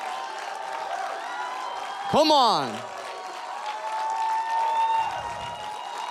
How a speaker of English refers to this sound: Oh, I know better than to stop a Jesus cheer too early. You guys feel good?